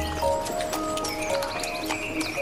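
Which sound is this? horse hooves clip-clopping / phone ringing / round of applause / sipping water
horse hooves clip-clopping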